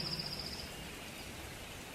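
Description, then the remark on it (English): Soft, steady patter of gentle rain falling on a meadow, a quiet continuous hiss with no talking, and a faint high bird chirp trilling briefly at the start. “The worries and insecurities that had been plaguing me during the day slowly melted away as the rain began to fall. The rain was gentle at first, slowly turning into a light shower.”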